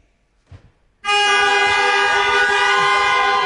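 A faint click, then a car unlocked by a remote key fob, as a group presses their keys after a countdown, answers with a loud, steady horn blast that holds without a break. No one speaks.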